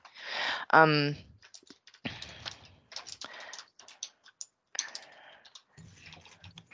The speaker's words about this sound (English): Hear me feverishly typing.